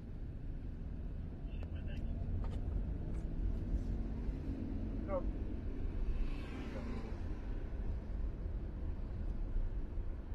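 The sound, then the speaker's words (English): ATV engines drone steadily along Broad Street in Edgewood, Rhode Island, a loud, continuous rumble that swells as one passes by midway, with faint muffled voices in the background. “The ATV's invade Broad street in Edgewood RI”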